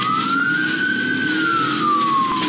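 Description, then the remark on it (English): A police siren wails loudly, one long tone rising and falling slowly, over a steady low rumble of traffic or engine noise, with no one speaking, during a police pursuit of a driver who fled a traffic stop and later crashed into a truck. “high-speed chase with police that ended in a crash”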